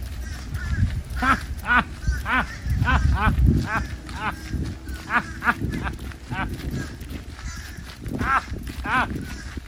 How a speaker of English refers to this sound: They laugh like you, those fucking crows.